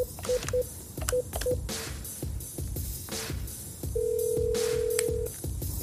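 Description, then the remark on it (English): A handful of short telephone keypad beeps sound in quick, uneven succession as a phone-banking call is dialed, followed later by a longer steady tone, all over a low, busy background rumble with no one speaking. “I'm sure when you call people, if you tell them who you are, then they're excited that you're on the phone.”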